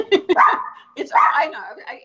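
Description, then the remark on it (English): A small Chihuahua lets out a quick pair of sharp yips, then two longer, whining barks about a second apart, fairly loud. “And occasionally you'd hear her do a little bark here and there.”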